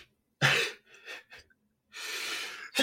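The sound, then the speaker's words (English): A sharp, explosive sneeze bursts out, followed by a few short breathy catches, a longer rushing exhale and another abrupt burst at the end. No one speaks. “Bless you.”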